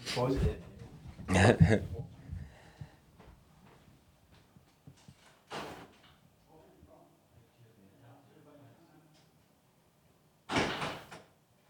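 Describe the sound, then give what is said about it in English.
A front door is opened for a delivery man and shut, giving a few sharp clunks and thuds spread over several seconds, with faint voices and shuffling audible in between. “It's the door. Better get the door.”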